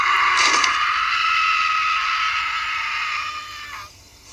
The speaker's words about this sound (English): And his scream when he wakes up, like that scream is...